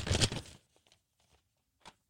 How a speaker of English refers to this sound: I mean, I really messed up my paper, so I crumbled them all up.